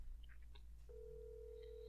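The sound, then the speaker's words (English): A phone call being placed to a phone set on Do Not Disturb: a few quick electronic beeps, then a steady, sustained ringing tone that holds to the end. It's fairly quiet, with no voices. “All right, go ahead. Call me.”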